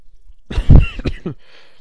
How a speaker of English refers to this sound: sorry if I'm coughing. I'm way too close to the microphone.